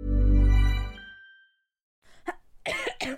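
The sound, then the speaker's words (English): A sustained low tone fades into a short silence, then a person coughs, two or three harsh, rasping bursts in quick succession. “I know you don't really say bless you for a cough.”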